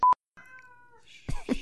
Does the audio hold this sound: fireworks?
no